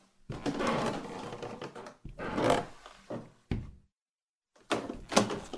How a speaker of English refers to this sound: The tattered white door at the end of the hall opens to a staircase.